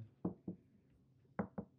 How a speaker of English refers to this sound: You knock? I don't know. You said hopefully it works out. Yeah. So why would you knock? Because the knock means that you want it to work out, right? No, that means that you don't want it to happen.